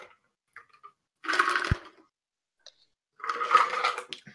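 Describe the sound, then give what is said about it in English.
Two bursts of wet slurping and gulping from someone drinking water, each lasting about a second with a short pause between, and a soft thump during the first. “That was me. Wait, that what? Was me drinking.”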